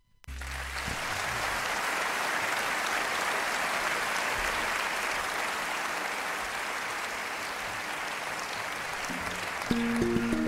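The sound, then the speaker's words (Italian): Sustained applause from a live concert audience for a quartet, a dense, steady wash of clapping that holds evenly for about ten seconds, with faint low tones near the start and end. “Questi applausi sono tutti per il quartetto”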